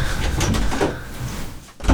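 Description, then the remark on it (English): A door slides or swings open as a local DJ comes through it, with a sustained rumbling, scraping sound lasting about two seconds, ending in a louder thud or bump as it finishes moving. “Coming through that door now is none other than the much acclaimed local DJ”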